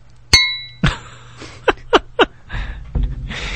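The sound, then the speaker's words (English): Two glasses clink once in a toast to George, a bright ringing chime that fades quickly, followed by several soft knocks, rustles and handling noises with no one speaking. “Cheers to George.”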